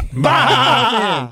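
A person mimics a sheep with one long, wavering, nasal bleat lasting just over a second, loud, with no other sounds around it.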